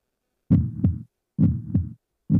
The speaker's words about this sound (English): I found it. You ready? Heartbeat.